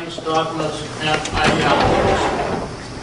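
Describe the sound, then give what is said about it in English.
A busy room empties out as reporters leave in the middle of a speech and head across the street: footsteps shuffle and doors swing and thump, with bursts of movement noise over a steady murmur of voices in the background. “You can hear people shuffling around, doors swinging, as they head across the street.”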